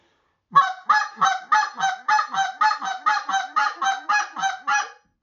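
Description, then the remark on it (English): A goose call blown in a fast, steady run of about fourteen loud honks, imitating a goose, with no talking over it. “GOOSE CALLING: LESSON 101”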